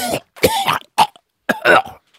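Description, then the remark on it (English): A man vocally imitates someone choking to sum up golfer Jordan Spieth's performance over his last holes at Augusta: a run of strained, gagging throat sounds and rough coughs in several loud bursts with short gaps, ending in a faint wheeze. “He's choking. His last three holes... Like a man with a chicken bone lodged in his trachea.”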